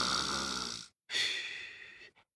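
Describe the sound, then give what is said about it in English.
A storyteller's voice mimics snoring: two long, breathy rasping snores separated by a short pause, fairly loud, ending with a tiny puff of breath. “And she'd rolled over onto her back, and she was snoring.”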